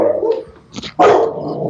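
A chocolate Labrador named Bo (Beaumont) barks loudly, a short burst followed by one strong deep bark that trails off, with no talking.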